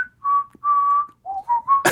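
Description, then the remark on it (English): A short whistled melody from the soundtrack of the video game Deadly Premonition, clear: two long sustained notes followed by three quicker stepped notes, ending in an abrupt burst of breathy noise. “But aside from the very good whistle soundtrack...”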